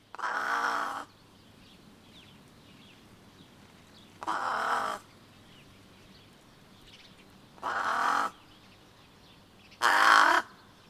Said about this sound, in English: Some birds are found all across this band of Palearctic Hot Desert, from Africa to the Middle East to Western or Central Asia. One example is the brown-necked raven, Corvus rufocalis.